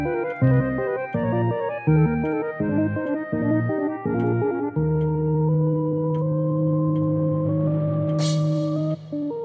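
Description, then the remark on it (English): A cuckoo clock calls, marking that it is time for the Clockwork Cabaret, in a series of bright, repeated two-tone notes with short gaps between them, then gives way to a steady, sustained tone that slowly rises in pitch. No one speaks. “With the sound of the cuckoo, you know that it is time for the Clockwork Cabaret.”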